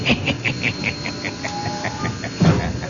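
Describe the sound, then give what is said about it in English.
A steam train chugs laboriously up a grade, its quick, steady chuffs repeating over a constant hiss of steam and rumbling machinery, with a heavier thump near the end. “Listen to that old train dragging up that grade.”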